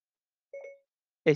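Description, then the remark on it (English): A short electronic tone chimes once from a phone as its voice-to-text feature is activated for a text message, about a quarter second long, followed after a pause by a brief burst of a voice. “I use this, the voice thingy that's on your phone. So, like, if I went to text message Vincent, right, there's a little voice thing. I click it.”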